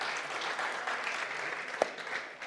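A King's Church audience applauds a church trustee steadily, a dense wash of many hands clapping at even loudness throughout, with one sharper clap standing out briefly near the end.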